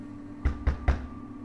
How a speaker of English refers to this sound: The knock came again, a little louder this time.